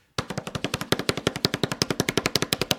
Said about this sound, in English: Are you ready? A little drum roll action.